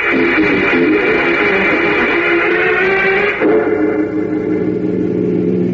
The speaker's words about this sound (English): Drive more slowly, Jim. I'll make you stop and I'll take the wheel. Well, there's hardly any traffic out here, Miss Lane. Just the same, stay under the speed limit, will you, until we reach River Road.